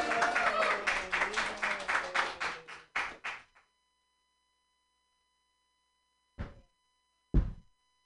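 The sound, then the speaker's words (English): An audience bursts into applause for a few seconds, the clapping dense at first, then thinning out and stopping. Two isolated dull thumps follow after a pause. “All right, clap it up for me.”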